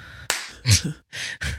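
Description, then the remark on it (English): A handful of sharp hand claps, about four quick bright smacks in an uneven rhythm, fairly loud with no talking over them. “did you clap when you started it? How did you do that with two hands?”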